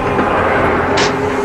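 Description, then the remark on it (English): A steady, continuous low rumble fills the scene from inside a train carriage rolling along the rails toward Truro, with a brief hiss rising midway through. “I said we should have caught that earlier train.”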